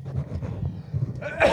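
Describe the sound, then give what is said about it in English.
One short, harsh cough bursts out at the very end, loud and breathy, after a stretch of low rumbling background noise. “Oh, cough.”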